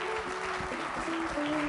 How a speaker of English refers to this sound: So give them a hand clap and welcome.